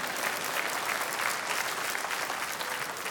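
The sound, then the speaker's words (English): Two people clapping in church during a sermon, a steady dense patter of handclaps that holds at an even level for the full three seconds, with no voices over it. “I got two people to clap over there.”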